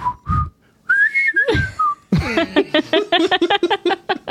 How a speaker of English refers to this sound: Set to some of the catchiest whistling ever.